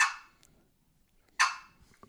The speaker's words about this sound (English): Then you got the cluck. You play that on the back half of the box call. You want your paddle almost closed.